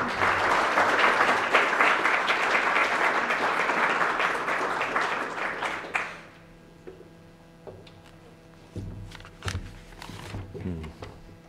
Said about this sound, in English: Would you please welcome Foreign Minister Thórdarson with your warm applause.